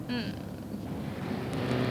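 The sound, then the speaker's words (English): A car drives along toward Devon with a steady, continuous engine drone and road rumble at an even moderate loudness, with a brief higher whine near the start. “Darling, are you planning to drive all the way to Devon non-stop?”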